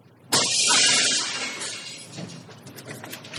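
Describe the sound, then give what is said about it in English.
A sudden loud crash of glass shattering as an intruder breaks into a retiree's home, followed by a couple of seconds of tinkling, scattering shards settling and fading. No voices. “Smith heard what he was waiting for. The sound of breaking glass.”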